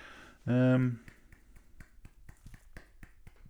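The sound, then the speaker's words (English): A brief sung or hummed tone, then a rapid, slightly uneven run of sharp, dry hand slaps on a conga drum, fairly quiet, continuing steadily to the end. “It's me slapping a conga what's eel.”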